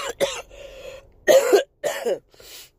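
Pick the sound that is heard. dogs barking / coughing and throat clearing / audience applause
coughing and throat clearing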